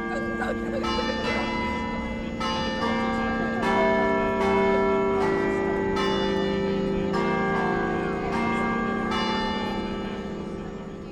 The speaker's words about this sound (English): The show's encore was the relighting of the Moorhead Patterson Bell Tower. Three, two, one. After the countdown, the bell tower was illuminated in blue and white to the cheers of hundreds of spectators. Then it played a familiar tune.